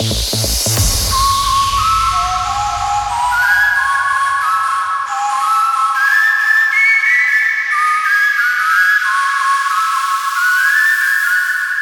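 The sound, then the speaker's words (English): A person whistles through their lips, holding a series of clear, steady notes that step up and down in pitch. The whistling is loud and sustained, with no talking. “Blow harder and keep your tongue relaxed.”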